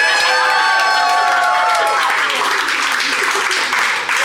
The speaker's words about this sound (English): Listen to that crowd going wild.